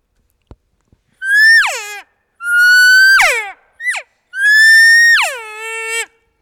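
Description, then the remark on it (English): Four loud elk cow calls given to a bull elk, high nasal mews that hold steady then slide downward into a whiny tail, separated by brief pauses, with a couple of faint clicks at the start. “Once the conversation changes and he gets up out of his bed and you can hear his bugle change, now I'm going to give him a cow call that's like, oh, hey. Hey there, come on over.”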